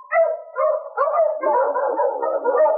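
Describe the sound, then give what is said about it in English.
A pack of sled dogs barks and yelps together in a loud, continuous, overlapping chorus, with no talking over it. “Oh, is your dog, Sergeant? Oh, I wonder why they're talking.”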